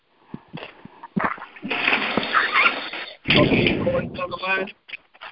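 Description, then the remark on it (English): Loud, rough snoring from someone on an unmuted conference call line comes through as two long, raspy, noisy breaths back to back, preceded by a few short clicks and scraping sounds. “Somebody snoring so hard you can barely hear.”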